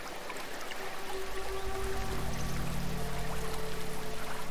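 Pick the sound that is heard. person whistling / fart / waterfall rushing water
waterfall rushing water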